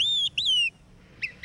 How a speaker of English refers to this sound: Some of the most beautiful sounds in the world are found in our forests. Olive-sided flycatcher.